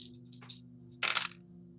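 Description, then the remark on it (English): Dice clatter on a hard tabletop: a few light ticks, a brief rattle, then a louder tumbling burst that settles quickly, over a steady low hum with no talking. “Please roll that dice.”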